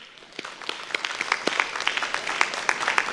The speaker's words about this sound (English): Give each other a big clap offering, everybody.